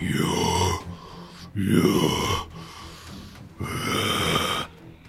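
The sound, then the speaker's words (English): A voice imitates heavy, labored breathing: three loud, raspy, growling breaths in a slow rhythm with short pauses between them. “And you can tell he's got labored breathing at this point.”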